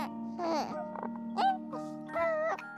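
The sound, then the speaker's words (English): A newborn baby coos and babbles in soft, sing-song bursts, three short vocalizations with rising and falling pitch, clear over a faint steady background hum. “Think about the cooing of a newborn child.”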